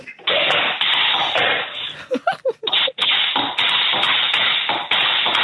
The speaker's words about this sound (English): Is he walking a horse through the kitchen? Tap dancing to the Grange Hill thing. It might just work. Sounds exhausting. The noises.